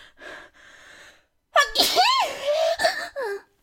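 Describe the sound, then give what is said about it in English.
A single loud human sneeze bursts out after a few quiet, breathy inhales, trailing off in a short voiced exhale. “I have to sneeze.”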